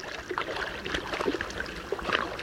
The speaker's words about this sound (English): On a cool July morning, three moose frolic in the waters of a Wasatch Mountain lake in Utah. Here, a large female urges her two young calves to follow her lead, and slowly they emerge from the water.